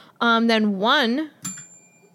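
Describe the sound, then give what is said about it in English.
A short vocal sound with a rising and falling pitch, followed by a single bright ding of a small bell whose thin, high ring lingers briefly. “I don't think this is a good bell.”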